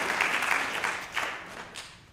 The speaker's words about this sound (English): You can all clap. Come on.